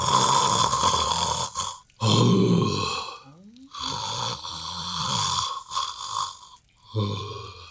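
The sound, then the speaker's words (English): Loud, rasping snores repeat in a steady rhythm, each long rattling inhale broken by brief pauses, dominant with no talking. “I hear a big snore.”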